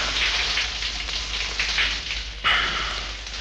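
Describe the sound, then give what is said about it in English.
A shower runs steadily with cold water in a bathroom shower cubicle, a dense hiss of spraying water with a brief shift in the spray partway through, then continuing loud and even. No one speaks. “Finally, I crawled to the bathroom on my hands and knees, turned on the shower, crawled into the shower cubicle, clothes and all.”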